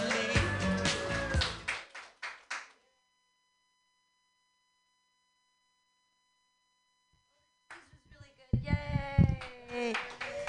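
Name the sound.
audience clapping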